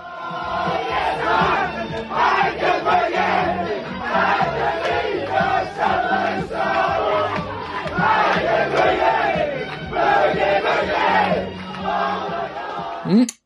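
A group of men loudly chant and sing a disco tune together, rowdy and off-key, with a steady rhythmic beat throughout, ending abruptly after about thirteen seconds.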